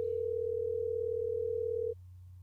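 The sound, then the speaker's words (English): A phone ringback tone sounds once, a steady mid-pitched electronic beep lasting about two seconds before cutting off, leaving only a faint low hum. No voices are heard. “Let's call him.”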